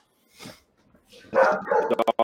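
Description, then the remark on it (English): A dog whines and cries in drawn-out, high-pitched bursts, then breaks into a quick run of short, sharp barks and yips, fairly loud. “I hear that motherfucker crying for you. Daddy, let me in.”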